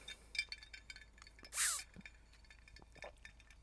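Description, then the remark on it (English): A giant glass mason jar, used as a drinking glass, clinks sharply once, bright, among a few fainter taps and knocks as it is handled while someone drinks green tea from it, with no voices. “And my glass is a giant mason jar, so we can call that 2 cups.”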